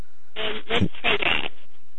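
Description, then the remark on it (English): Harsh, crackling static on a cell phone line, surging in a loud burst for about a second with a garbled, muffled voice-like texture beneath, then fading back to faint hiss. “It's very staticky.”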